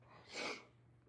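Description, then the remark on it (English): A single sneeze, the speaker's third, bursts out as a short breathy blast that swells and fades within about half a second, against a faint steady electrical hum. “And y'all know another sneeze is coming. That's three.”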